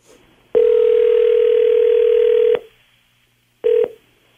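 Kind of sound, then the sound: signal or alarm, outgoing phone call ringing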